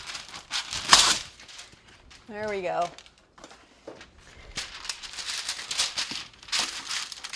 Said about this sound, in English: You need to get a baking sheet. A rimmed baking sheet is going to be easiest so things don't fall off the edge. And line it with parchment paper. So I'm going to do that right now. It's going to be loud. Hold on.